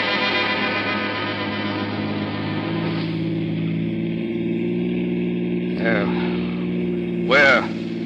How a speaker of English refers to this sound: Yeah. But not in a police car this time. We'll use my jalopy.